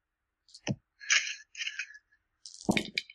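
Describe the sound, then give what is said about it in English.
Dice clatter onto a hard floor: a sharp clack, two rattling tumbles, then a final burst of knocking and skittering. The sounds are fairly quiet, with no talking. “And we got a plus on the floor and a plus on the floor.”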